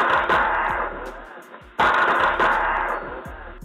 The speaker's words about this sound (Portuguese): Meu, isso é o Mike Tyson treinando num saco de pancada. Ele dando 5 socos em 1 segundo. Você tem noção? Além da rapidez, não são 5 socos. São 5 socos do Mike Tyson.